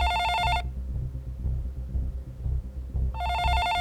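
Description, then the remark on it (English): Zoe's phone rings with a bright electronic trill, two bursts separated by a pause of about two and a half seconds, heard loud over a steady low throbbing background. “This Zoe's phone?”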